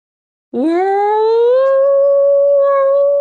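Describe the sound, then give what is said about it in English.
A person voices a whale call: one long, loud wail that swoops upward in pitch, then holds a steady moaning tone for nearly three seconds after a brief silence. “Let's hear your whale impression.”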